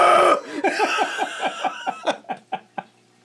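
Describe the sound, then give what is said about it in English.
A voice imitates an exaggerated gym workout grunt: one loud, strained vocal burst, then a quick run of about a dozen short, rhythmic grunting pulses that gradually slow and fade. “I don't always grunt at the gym, but when I do, it's.”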